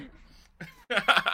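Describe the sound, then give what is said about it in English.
A quick sneeze: a soft breathy intake, then a loud, harsh burst of air that ends the moment abruptly. No talking. “Bless you.”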